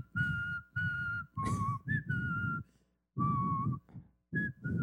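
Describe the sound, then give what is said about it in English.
Someone whistles a slow tune: a series of held, steady notes separated by short pauses, fairly loud and breathy, with no talking. “Whistle. What do you want to hear?”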